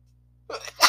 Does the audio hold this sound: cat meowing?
no